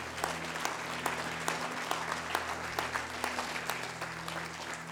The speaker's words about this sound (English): Can you clap your hands unto the Lord today?